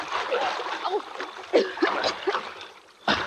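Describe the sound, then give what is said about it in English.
Sloshing and splashing through water while crossing a ditch about 20 feet wide, with repeated watery surges and a louder splash near the end, while a voice occasionally sounds underneath. “Let's get across that ditch. In the water? No. I will not do it. I will not go into the water.”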